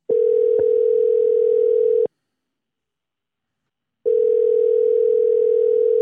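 An outgoing phone call to a friend: the ringback tone gives two long, steady electronic rings, each about two seconds, separated by a silent pause. It is loud and clear, with no voices.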